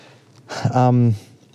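A single short cough: a breathy burst that runs into a voiced, tonal sound lasting about half a second, moderately loud against a quiet background, with no talking.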